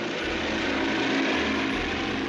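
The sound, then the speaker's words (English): The engine of Howard Hughes' propeller airplane drones steadily during his record-breaking flight through January skies to Newark, New Jersey: a loud, continuous roar with a rough, buzzing hum that stays constant throughout, with no voices. “Today, he had a plane to push to its outer limits.”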